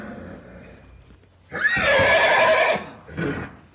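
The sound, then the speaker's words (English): A horse in distress lets out a loud, shrill whinny lasting over a second, followed by a shorter, fainter whinny, with low rumbling background noise. “he heard a crash from upstream, mixed with what he knew were the desperate cries of the Bensonhavers and their team of horses”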